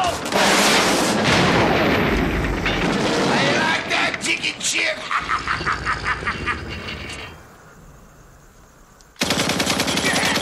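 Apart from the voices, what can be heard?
gunfire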